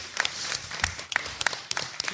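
A small group gives a round of applause to thank a volunteer: a steady patter of overlapping claps with sharper individual hand strikes popping out irregularly, moderately loud throughout, with no voices over it.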